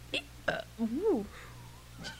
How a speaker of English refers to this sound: These little burps. That one was a ride. It was a ride for me, too.